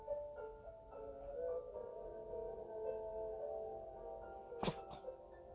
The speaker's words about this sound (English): That was my cat. My apologies.